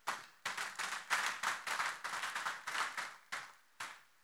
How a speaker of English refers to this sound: You want to clap to the Lord?